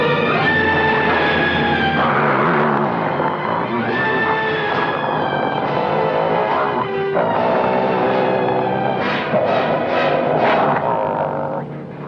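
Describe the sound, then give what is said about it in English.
Over a telephone call from London, a man imitates a wolf, growling and snarling loudly for about twelve seconds, his rough, rasping voice rising and falling in pitch with quavering, whinny-like bursts toward the end. “A guy growls like a wolf.”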